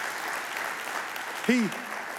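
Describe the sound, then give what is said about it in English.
A crowd claps steadily in a dense, continuous wash of applause, with a single rising-and-falling whoop of cheering cutting through briefly near the end. “I could see the look on his face when people started clapping and cheering.”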